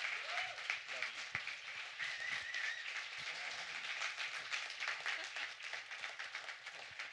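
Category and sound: crowd, audience applauding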